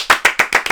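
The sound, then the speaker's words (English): A quick run of about six hand claps in a steady, even rhythm, each one sharp and bright, clapped loudly by hand as a small round of applause in place of an applause sound effect, with no voices. “Wish I had like a round of applause sound effect right now, but.”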